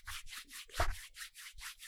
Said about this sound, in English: Oh. That's my fingers. Look at those thick fingers roll. Listen to these calluses rub.